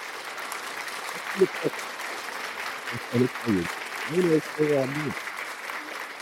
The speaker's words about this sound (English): And this is for you, brother. Big fat round of applause.